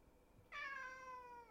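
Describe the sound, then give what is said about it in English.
A single faint cat meow from some distance away, drawn out for about a second with a slightly falling pitch, following a moment of near silence. No one speaks. “Distant and quiet cat, I think it speaks for itself.”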